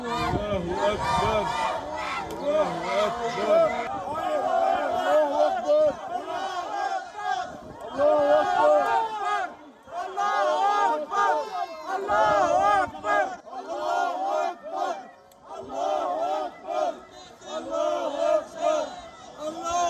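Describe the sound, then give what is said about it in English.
A crowd of many voices shouts a repeated chant of "God is great", loud and overlapping, rising and falling in ragged waves for the whole stretch with no single voice standing apart; Palestinians being escorted by Israeli security forces outside a mosque. “Many of them can be heard shouting, "God is great."”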